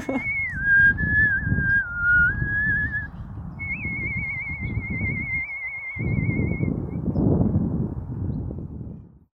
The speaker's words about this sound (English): It's taken me a while to kind of feel confident with saying, like, I'm a whistler, this is what I'm doing.